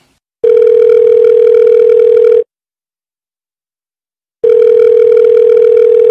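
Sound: telephone dialing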